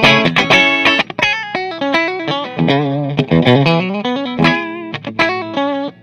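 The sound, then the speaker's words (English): A distorted electric guitar, a self-assembled 'Frankenstein' experimental jazz-style model played through distortion effects, plays a loud, buzzy lead line with sustained bending notes and quick picked phrases, rich gritty harmonics throughout, and no voices. “This is like the one guitar I'm always hesitant to use in the studio because it just buzzes like everywhere.”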